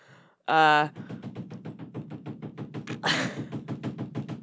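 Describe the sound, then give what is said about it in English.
A loud, sustained creak like a bathroom door swinging open, followed by a steady run of quick, rhythmic knocking or rattling taps and a brief hiss of noise partway through. “He's going into the bathroom now. This door.”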